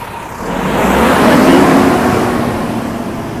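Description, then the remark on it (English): A car engine swells and rises in pitch as the car speeds up to overtake a big lorry, with steady road rumble underneath. The engine peaks midway, then eases back to a constant drone. “and before overtaking this big lorry here, which I'm allowed to do now, very good.”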